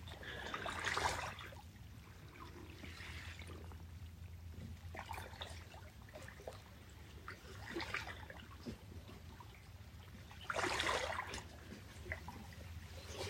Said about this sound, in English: The water is thick. The undulations are smooth, gentle, calling us into our place of peace, calling us in,